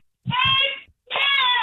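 child screaming

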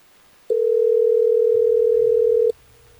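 telephone dial tone

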